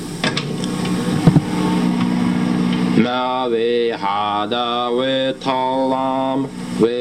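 A microwave oven runs with a steady, droning hum, alone at first; after about three seconds a man starts singing Mary Had a Little Lamb in a Slavic accent over the continuing drone, on a home tape recording from fall 1989.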